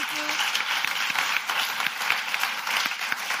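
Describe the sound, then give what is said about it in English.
Sustained audience applause for four speakers at the end of a debate, a dense, steady wash of many hands clapping at fairly even loudness throughout, with no speech over it. “And I think your applause is in order to all four speakers.”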